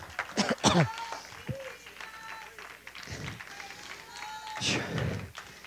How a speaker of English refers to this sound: Hello, somebody. Give God a hand clap praise.